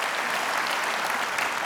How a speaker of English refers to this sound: Last week we looked, you want to applaud? You can applaud. I love applause. Because that's good news.